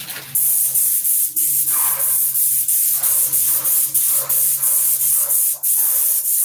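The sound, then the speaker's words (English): A handheld spray gun hisses steadily and loudly, a continuous airy blast of varnish coating as a test pattern is sprayed, with small pulses as it sweeps back and forth, no voices present. “But either way, today, I'm just gonna hold this one and spray it for you.”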